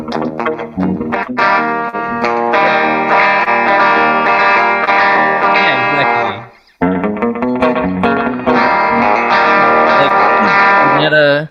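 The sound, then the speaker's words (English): Loud, sustained electric tone drenched in a short slapback echo, each note trailed by a quick single repeat, played in two long phrases split by a brief cutoff. “It's got that little slap back kind of reverb, and yeah.”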